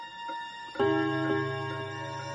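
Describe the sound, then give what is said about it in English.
A railroad clock ticks steadily, and a resonant chime strikes partway through, its bright tone ringing on and slowly fading beneath the continuing ticks. “My grandfather's railroad clock had struck the seventh hour of the afternoon not so long ago.”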